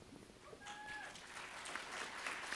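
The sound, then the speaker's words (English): An audience claps steadily for a doctoral candidate just introduced as the next speaker, the dense applause building slightly and holding for a few seconds, with a brief high whistle-like tone rising over it near the start. “Apparently I have some fans in the crowd.”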